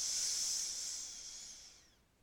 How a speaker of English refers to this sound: And down dog, breathe out. Have a breath here in through your nose.